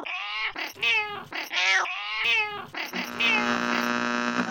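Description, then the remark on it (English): A cat named Kipper meows several times in quick succession, fairly loud, the calls rising and falling in pitch before stretching into a longer, drawn-out yowl. No one speaks. “Do you know any good cat jokes, Kipper?”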